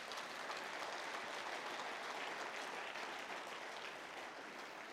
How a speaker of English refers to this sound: Go and give God a clap offering.